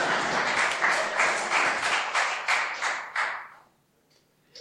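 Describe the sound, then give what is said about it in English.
A crowd claps steadily for about three and a half seconds, a dense patter of many hands with a few louder bursts, then fades out quickly into near silence with one last faint tap. “Give him a clap, everyone.”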